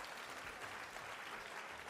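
An audience applauds volunteers who came up to guess, with many hands clapping in a dense, steady wash of sound that holds at an even, fairly strong level throughout, with no voices standing out.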